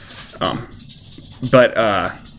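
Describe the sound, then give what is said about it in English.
A needy pet dog whimpers in a short, high, wavering whine that rises and falls, after a brief scuffling burst, fairly loud against quiet surroundings. “I promise I love my dog and I take care of my dog. He's just being needy.”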